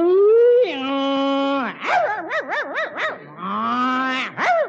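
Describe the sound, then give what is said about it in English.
A voice imitates a dog fight: long, drawn-out howls slide into rapid wavering yelps and whines, then another sustained howl ending in a sharp bark-like cry, loud with no other talk. “It's a dog fight.”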